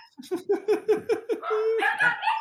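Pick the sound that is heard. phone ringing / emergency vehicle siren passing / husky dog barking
husky dog barking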